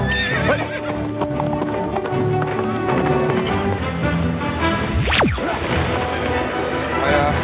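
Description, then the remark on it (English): A male horse whinnies and snorts while hooves clip-clop on a hard surface, with a sharp descending sweep midway and a busy, noisy background throughout. “No, he isn't. What? I speak horse. He's called Susan.”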